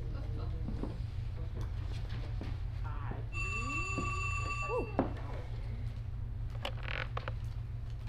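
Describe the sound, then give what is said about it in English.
A telephone rings once, a steady electronic tone lasting about a second and a half, over a constant low hum with indistinct voices murmuring. “there's a phone call for you, honey. Please come to the elevator phone.”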